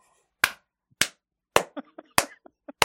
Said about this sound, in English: See, clap.